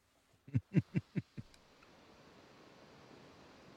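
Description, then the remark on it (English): Five quick, evenly spaced thumps are followed by a steady wash of electrical hiss, laptop interference picked up through a small amplifier, rushing like a waterfall and continuing alone at low volume. “what you're hearing right now is my laptop”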